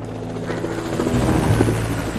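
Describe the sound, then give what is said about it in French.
A helicopter flies over the area during a search of the countryside around a hamlet, its steady rotor thrum and low engine drone loud and continuous throughout, with no voices. “Un hélicoptère va survoler la zone.”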